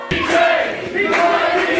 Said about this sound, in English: I want you to put your hands together and welcome him to the stage. Big round of applause.